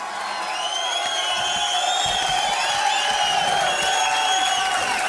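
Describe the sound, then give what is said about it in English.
A large crowd cheers and applauds steadily, with scattered whoops and high shouts rising over a dense, continuous roar that stays loud and even throughout. “That applause means that the NFL section's over and we're going to the MLB, but not just the MLB.”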